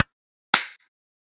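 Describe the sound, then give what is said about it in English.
Two sharp hand claps about half a second apart, made to sync audio, the second louder with a short ringing tail, then silence. No one speaks. “You're 10 minutes in and we have to clap.”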